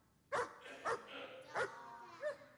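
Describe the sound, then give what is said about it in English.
A dog barks four times in short, sharp bursts spaced irregularly apart, with a slight whiny, yelping edge to some barks. “Oh, isn't he cute? He's a dog.”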